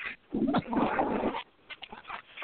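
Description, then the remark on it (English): A dog whimpers and whines in a couple of strained, high-pitched bursts, followed by softer intermittent whines, with no talking, as it is being taken outside. “I'm taking my dog outside.”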